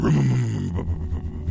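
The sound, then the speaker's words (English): Someone growls out a rough vocal impression of a muscle car engine roaring to life and peeling out of a parking lot in the distance, a loud throaty rev that sinks into a lower, rumbling drone. “Of her big muscle car sort of, you know, roar to life and peel out of the parking lot in the distance.”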